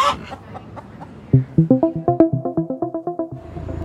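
A chicken clucks in a quick, steady burst of about a dozen short, loud clucks that speed up slightly, after a moment of quiet rustling.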